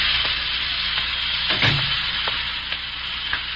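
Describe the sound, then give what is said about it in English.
A steady, dense hiss of steam fills a steam room at a fashionable club in a large Midwestern city without pause, fairly loud, with a few faint clicks and a soft low bump partway through. “A man sits in the steam room at a fashionable club.”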